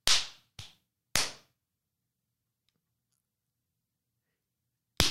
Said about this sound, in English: Clappy claps. Clappy claps.